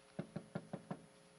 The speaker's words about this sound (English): Knock, knock, knock, knock, knock, knock.